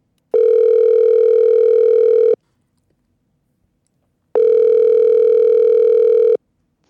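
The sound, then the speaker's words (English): Two long, steady telephone tones, each about two seconds, separated by a two-second pause, as a call is placed to reach a guest by phone. Loud, with a buzzy edge and no one speaking. “And so we're going to get him on the phone right away.”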